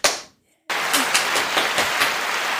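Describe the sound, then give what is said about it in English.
A crowd bursts into applause for a guest being introduced, a dense, steady wash of many hands clapping with a few sharper claps standing out, following a brief decaying sound and a moment of silence. “I know you can't hear it right now because you don't have headphones, but I had like a whole ass crowd really? Just applaud for you, yo.”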